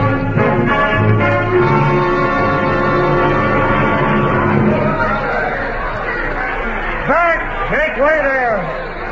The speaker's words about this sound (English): What's that? The usual entrance of our dear Essex. The crowd's huzzaing, the girls ogling. I think he must give silver to the trumpeters.